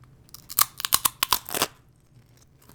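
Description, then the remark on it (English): Loud crunching from biting into Firehook garlic thyme Mediterranean baked crackers, eaten into a microphone: a quick run of about eight sharp, crackly bites packed into a second, then quiet with no talking. “Good crunch. Can you hear that crunch? ASMR. ASMR, are you ready? Gross, I'm about to eat into a microphone.”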